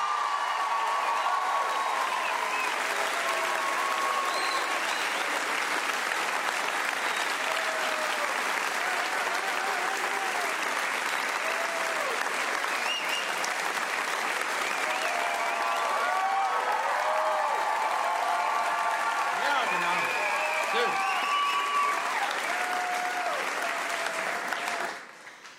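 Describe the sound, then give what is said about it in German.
A crowd at a church worship conference (Godi-Conference) applauds the technicians, filmmakers, band and musicians steadily for about twenty-five seconds, dense clapping with scattered whoops and shouts mixed in, swelling slightly near the end before cutting off abruptly. “Und ich finde, wir könnten mal so richtig klatschen für Techniker, für Filmer, für Band, für Musiker.”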